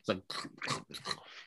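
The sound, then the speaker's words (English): Loud crunchy chewing of Snyder's pretzels: four or five sharp, rhythmic crunches in quick succession, with faint mumbled voice sounds mixed in. “Oh, he's busy eating a pretzel. Sorry, I had some pretzels. I always bad when I hear because it's so loud when you chew.”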